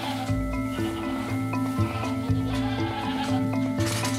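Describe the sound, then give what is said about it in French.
Several goats kept by goat farmers bleat in overlapping, wavering calls, one after another with no pause, steady, with no voices over them. “producteurs de chèvres, deux frères, qui sont raccordés à cette réserve.”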